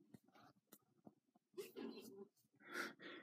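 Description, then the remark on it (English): Soft, breathy vocal sounds build up before a loud sneeze bursts out, followed by a second forceful noisy burst. “Bless you.”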